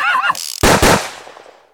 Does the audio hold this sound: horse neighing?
yes